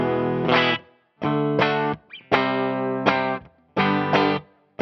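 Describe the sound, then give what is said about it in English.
An electric guitar with its pickup selector in the middle, combining neck and bridge pickups, and its tone knob set in the middle, strums about five loud, distorted chords in a stop-start rhythm, each ringing briefly with a bright, dense tone before being cut off. No one speaks. “I've got the tone in the middle, and the pickups are in the middle, so we're hearing both the neck and the bridge.”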